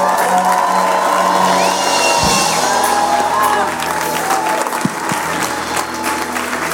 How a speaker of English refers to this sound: Church, can we put our hands together one more time